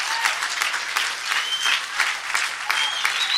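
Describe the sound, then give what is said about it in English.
A church audience bursts into sustained applause for every mom on Mother's Day, a dense wash of many hands clapping steadily with a few brief shouts rising above it, loud throughout without letting up. “Why don't we just give a great round of applause to every mom.”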